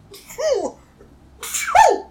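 Two sneezes about a second apart, each a hissy burst sliding into a voiced, falling cry, the second a bit louder and sharper. No talking in between.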